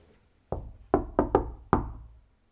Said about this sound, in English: So we went downstairs, the two of us, and we saw this little like door into this, presumably this room where the thermostat was, and we knocked on the door.